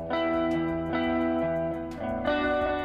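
A distorted, heavily effected instrument plays sustained, harmonically rich notes in a few phrases through a gated reverb effect, its reverb tail swelling with each note and cutting off sharply when the playing stops. No voices.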